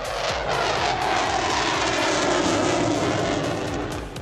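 airplane engines

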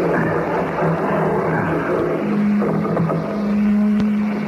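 motor running

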